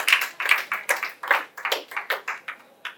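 crowd, audience clapping hands

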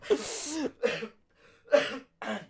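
human body sound, coughing fit

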